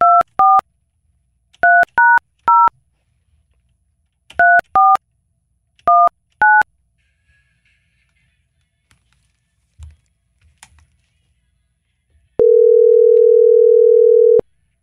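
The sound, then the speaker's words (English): A phone number is punched in to call a friend, as a series of short dual-tone keypad beeps in quick clusters, followed after a brief pause by a steady, loud tone lasting a couple of seconds. No one speaks. “Probably just heard my phone.”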